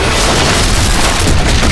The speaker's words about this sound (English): The mysterious figure crashed onto the deck, reducing a discarded deck chair to splinters.